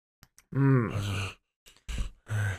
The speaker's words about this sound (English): Stop heavily breathing.